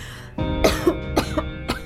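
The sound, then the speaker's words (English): Three harsh, raspy coughs from someone who has not yet recovered from a cough come in close succession at a steady pace, loud, with a rough throat-clearing quality and no talking. “Sorry to hear that you still have not recovered from your cough.”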